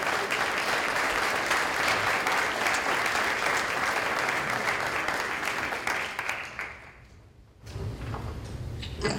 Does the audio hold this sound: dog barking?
no